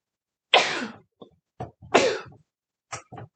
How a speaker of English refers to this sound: Excuse me. Allergic to something, I haven't figured out what it is yet, so I sneeze constantly.